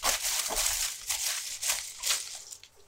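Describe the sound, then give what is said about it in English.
Papery rustling and crinkling in uneven bursts, like folded slips being shaken and crumpled together inside a hat, with bright crackly noise rising and falling over a few seconds. “Shake the hat.”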